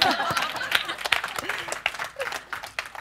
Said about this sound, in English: Keep clapping, she's still walking.